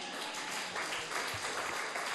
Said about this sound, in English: Clap for technology.